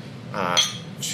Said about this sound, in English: Speaking of beer, cheers. Just poured out some Allagash Saison, which is one of my favorites that pairs with food.